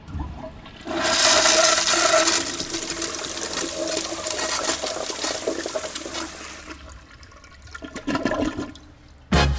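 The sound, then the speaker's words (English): A toilet flushes with a sudden loud rushing whoosh of water that gradually fades into gurgling and a trickling refill, ending with a brief knock at the very end. “Please don't flush nappies, sanitary towels, paper towels, gum, old phones, unpaid bills, junk mail, your ex's sweater, hopes, dreams or goldfish down this toilet.”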